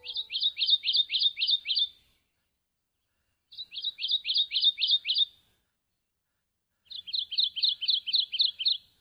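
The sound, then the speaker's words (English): A Kentucky warbler sings three bursts of its song, each a quick run of about six rolling, repeated two-note phrases, separated by short pauses. Clear, with no other sounds. “Despite its striking color pattern, it's a bird that's more often heard than seen, singing like this.”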